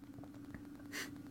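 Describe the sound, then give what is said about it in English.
A single quick sneeze bursts out as a sharp, breathy hiss lasting a fraction of a second, over a steady low hum, with no one talking. “Bless you.”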